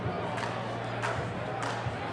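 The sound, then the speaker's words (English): A large crowd of KWF wrestling fans claps along in unison during a match, steady beats roughly every two-thirds of a second, rising over a constant roar of arena chatter and murmuring. “The fans really seem to be getting into this one, too. You can hear them clapping along as these guys are filling themselves out.”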